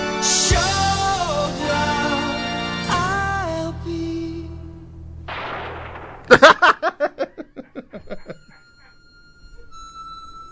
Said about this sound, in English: A gunshot, and the lone cowboy dies. And that's it. It ends like that.